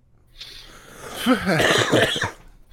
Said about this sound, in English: I got fucking COVID. What do you want? There's going to be some coughing.